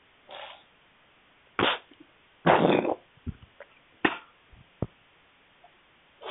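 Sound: sneeze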